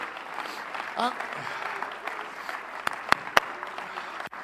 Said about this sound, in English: Oh, somebody clap your hands and worship and praise the Lord for a minute.